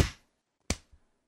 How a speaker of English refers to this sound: If you want, like, I'll do it once, and then I'll go 1, 2, 3, and then we'll all clap on what would be 4.